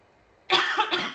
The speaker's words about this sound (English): Sorry. You are not allowed to cough. How dare you?